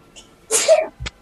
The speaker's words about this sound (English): Bless you. Bless you.